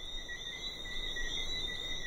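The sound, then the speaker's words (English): A steady outdoor chorus of frogs on a Friday night at 8 o'clock, a continuous high-pitched trilling that holds evenly throughout, moderately faint, with no voices. “The frogs were coursing outside.”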